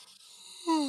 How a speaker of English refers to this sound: That was a real yawn. That was not a fake yawn, by the way.